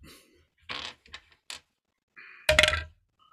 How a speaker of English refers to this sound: roll a d20 for me.